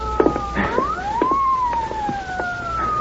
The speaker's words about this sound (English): Hey, listen. Police car. Yeah, that woman must have called the police, too. But we can't wait for them.